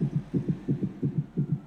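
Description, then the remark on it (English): A rapid heartbeat thumps out five quick lub-dub pairs in a steady rhythm, low and muffled, with nothing else present. “There was a new heartbeat that was added to the area, and he wondered if it was Christian.”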